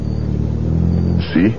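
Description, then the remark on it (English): A car engine idles along in a low, steady drone as the vehicle crawls slowly past road construction at night, fairly loud, and a voice briefly cuts in at the very end. “See how the car must practically crawl past because of the construction?”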